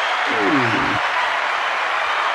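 A steady wash of audience applause, dense and even throughout, with a brief spoken voice over the first second before the clapping continues alone.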